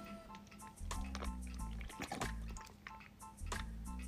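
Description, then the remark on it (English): Someone drinks water, with a series of wet gulps, sips and liquid squishes over a steady low hum, and no talking. “Excuse me while I get a drink of water.”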